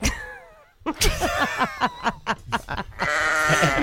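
A sheep bleats loudly, a quavering, stuttering run of short bleats followed by one longer, drawn-out baa, with no talking.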